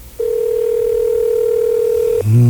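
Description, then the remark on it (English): A steady, unbroken telephone dial tone hums clearly for about two seconds during an on-air phone call from radio station YZ in Hartford, then stops abruptly as a fuller, different sound cuts in at the very end. “I feel like David Letterman doing one of his phone calls.”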